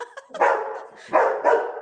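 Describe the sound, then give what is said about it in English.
A dog barks three times in an uneven rhythm, each bark full and mid-pitched, preceded by a couple of softer yips, with no talking over it. “sorry, you have a dog and a cat situation.”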